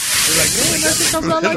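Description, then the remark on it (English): A voice makes a loud, steady hissing shush, mimicking a forceful urine stream, holding it for over a second before it breaks into a brief voiced, wavering tail. “Usually that's what it sounds like, a long-ass stream and shit.”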